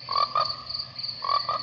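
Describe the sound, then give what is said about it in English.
Frogs croak in a trailer for the 1972 film Frogs, in short, raspy bursts, two quick calls, a pause, then two more, over a steady high-pitched insect-like drone and a low background hum. No one speaks. “Remember Sam Elliott and Ray Milland in 1972's Frogs?”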